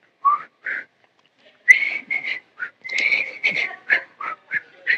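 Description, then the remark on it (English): Someone whistles a TV theme tune: a bouncy run of short, clear notes with brief gaps, unaccompanied and with no talking. “Like if I could whistle, I'd do.”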